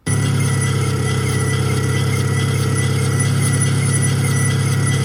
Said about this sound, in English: So we have a brake pad sound. Let's play that, and then maybe you guys can explain the difference in what these two things would sound like. Obviously, it's hard through the speakers, but here's what this person claims is the brake pad sound.